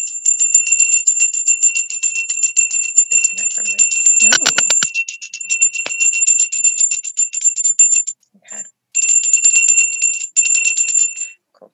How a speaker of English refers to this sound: Okay, I'm just going to use the bell. Sorry, it might be a bit annoying.